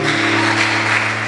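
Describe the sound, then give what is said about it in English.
An audience claps together in a dense, steady wash of hand claps at an occasion honoring their pastor, Bishop Dyke Heward Mills, fairly loud throughout, with a low steady hum beneath and no voices. “Your clapping is not equal to anything.”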